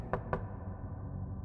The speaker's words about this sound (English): The doors weren't locked, hadn't been for some time, but the knight still knocked.